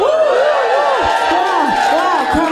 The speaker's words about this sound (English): Wow, crowd goes wild.